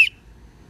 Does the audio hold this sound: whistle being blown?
yes